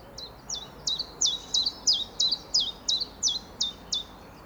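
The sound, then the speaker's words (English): A chiffchaff sings its steady two-note song, about a dozen clear, high notes alternating in an even, evenly spaced rhythm with equal weight on each note, over a quiet background. “It's about giving equal weight to each sound in the two-sound phrase. Yeah. Chiff, chaff, chiff, chaff.”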